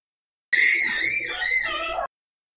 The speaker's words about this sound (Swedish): Det är någon som skriker utanför mitt fönster. Jag vet inte riktigt vad det är för någonting. Men... Nej. Jag tror det är grannar. Eller folk som bara rör sig i området.